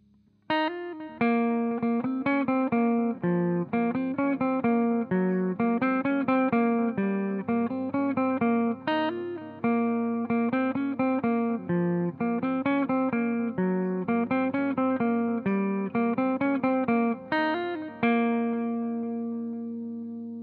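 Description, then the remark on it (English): Electric guitar plays a repeating, rhythmic arpeggiated verse figure through a warm bucket-brigade delay from a Carbon Copy pedal, echoes smearing each note together, then a final chord rings out and fades. No one speaks. “Let's take a listen to what our verse delay sounds like.”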